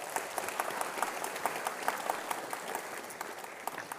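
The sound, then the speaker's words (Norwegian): An audience applauds steadily for about four seconds to welcome singers who are about to sing that evening, a dense patter of many hands clapping with sharp individual claps standing out, fairly even in loudness with no voices over it. “Skal vi gi dem en god applaus?”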